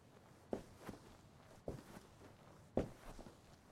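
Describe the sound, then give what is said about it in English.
Slow footsteps walk across a hard floor, three unhurried steps, each a soft heel-then-toe thud, fairly quiet, with no voices in the background, as a person walks out of a room through the door. “I blew out the candle lantern by the door and walked out.”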